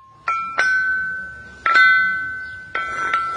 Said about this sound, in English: Archaeologist Jean-Lou Ringot is playing on a group of stones called a lithophone, or a rock gong.